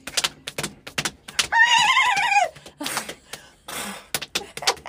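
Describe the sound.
Quick hand slaps on a lap patter in a galloping rhythm, imitating horse hooves, while a voice breaks into a wavering, whinny-like neigh partway through before the clopping resumes.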